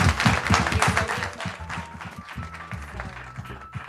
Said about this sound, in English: All right, well, why don't we give a round of applause to our awesome panel.